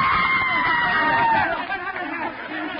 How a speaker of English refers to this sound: Audience screamed.